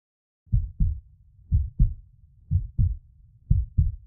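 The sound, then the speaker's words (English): Champa's loud, pounding heartbeat thumps in steady lub-dub pairs, four double beats at an even pace, low and heavy over a faint rumbling hum with no voices. “Champa's heart pounds loudly.”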